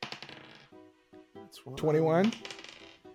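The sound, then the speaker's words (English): Dice clatter across a tabletop in a quick burst of sharp clicks that bounce and settle, followed by a short vocal exclamation. “Let me roll this baby.”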